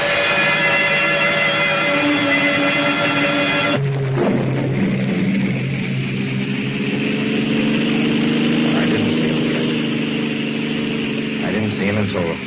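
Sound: car engine running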